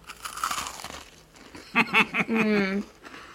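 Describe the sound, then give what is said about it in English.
Crisp crunching of a bourbon biscuit being bitten, with crackly snapping in the first second, followed by a few short muffled vocal sounds and a hum. “So let's give it a crunch. Well. Should we do a little bit of an ASMR crunch?”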